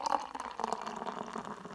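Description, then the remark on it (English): Hop House 13 Lager from Guinness poured into a glass, a steady splashing gurgle with a fizzy, frothy hiss running continuously for a couple of seconds, fairly quiet and with no voices. “You know, I pour these beers so you can hear it, but it ends up resulting in like half foam.”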